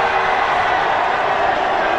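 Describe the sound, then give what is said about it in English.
A large rally crowd cheers and roars in a steady, dense wash of voices that holds at an even, loud level throughout, with no single speaker standing out. “Wow, listen to that crowd.”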